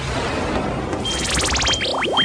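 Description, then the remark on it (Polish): An electronic phone or doorbell ring trills in rapid pulsing bursts, then a few quick rising chirps, fairly clear over a faint background hiss with no talking. “Ktoś dzwoni, w związku z tym będę kończył.”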